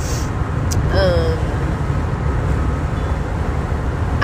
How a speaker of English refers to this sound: I don't know if you can hear that. I'm in the car doing anchor.